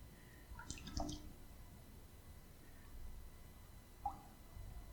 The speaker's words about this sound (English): drip some water on this sponge